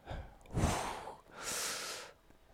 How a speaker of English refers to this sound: I'm breathing heavy because I'm nervous.